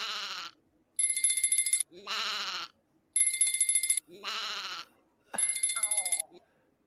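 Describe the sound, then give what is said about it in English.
A phone ringtone repeats loud: three electronic ringing bursts alternate with sheep-like bleating sounds in a steady back-and-forth pattern, with no talking. “Let's watch how long Big T lets this phone ring before paying attention.”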